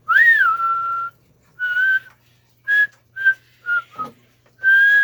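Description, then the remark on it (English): Several children whistle the bouncy theme tune of But Why together, a run of sustained and short notes in a clear melody, loud with no talking. The whistlers include children from Burlington, Ontario and Burnsville, Minnesota. “Our theme music sounds a little different today because you are the ones whistling it.”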